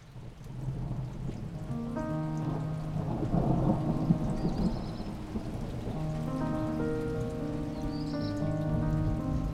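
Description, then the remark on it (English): Rain starting to fall, steadily pattering down with a deep, rolling rumble of thunder underneath, while sustained musical tones drift over the top; no one speaks. “Can you hear that? It's starting to rain.”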